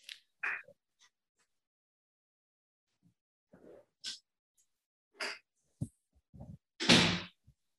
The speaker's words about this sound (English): Hold on. I got to shut the door. One sec. Okay.